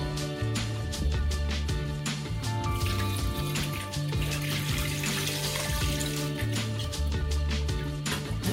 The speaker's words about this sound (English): go ahead and carefully pour the chicken stock into the pot.